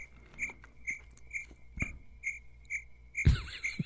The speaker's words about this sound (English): That was a cricket.